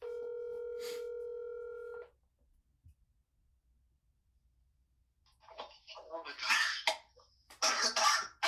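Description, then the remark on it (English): A telephone ring tone hums steadily for about two seconds as a call is placed to a witness, then the line goes quiet before a person's voice and rough, cough-like bursts come in loud. “We're ringing him up right now. Ringing up the first witness.”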